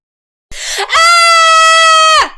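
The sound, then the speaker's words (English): A single loud, high-pitched human scream held steady for over a second after a brief breathy onset, then cutting off abruptly, heard alone. “Let's hear your best scream.”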